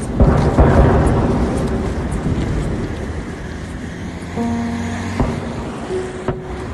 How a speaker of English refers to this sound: Floods of people have been crossing over the river, and you can hear outgoing artillery fire from the Ukrainian side.